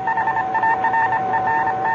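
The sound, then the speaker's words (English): Steady electronic tones of an incoming radio signal, received at 8:30, pulse in a quick, regular rhythm with a faint hiss underneath. The beeping holds at an even, fairly loud level throughout with no voices. “I always begin receiving a signal at that time.”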